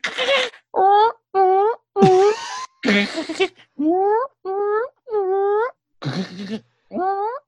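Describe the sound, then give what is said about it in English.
A person vocally imitates the call of a bird that wakes them in the morning: a steady series of about a dozen short, rising, wailing hoots, fairly loud, with a few rougher, breathy bursts mixed in between. “The birds wake me up in the morning. A little too early. And I have this one weird word that goes.”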